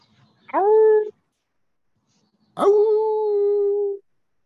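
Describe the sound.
Two loud howls by a person imitating an animal: a short rising wail, a pause, then a longer one that swoops up and holds a steady pitch before cutting off.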